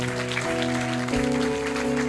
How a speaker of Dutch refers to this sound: Come on, we give Jesus another hand. Kom, laten we Jezus een geweldig applaus geven.